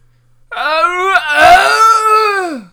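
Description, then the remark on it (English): A single drawn-out wailing yell, lasting about two seconds, as someone imitates a Swiss war cry. The voice rises into a strained, warbling peak, then slides down and trails off. “And can you give the audience just a little bit of a taste of this war cry that the Swiss usually yell?”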